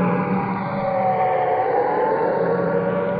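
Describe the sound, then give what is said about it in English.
An air raid siren wails steadily, its long sustained tone holding loud and unbroken throughout, with a faint wash of traffic underneath and no one speaking, heard at the entrance of an air raid shelter within sight of Nelson's Column. “I'll just let you listen to the traffic and the sound of the siren for a moment.”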